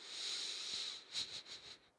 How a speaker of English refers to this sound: And I don't know. I don't know if I'm into this one. Let me give it another scent, another sniff.